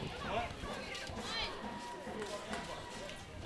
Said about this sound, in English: A lot of the students beginning to file in here this afternoon. Good crowd. Vocal crowd as well.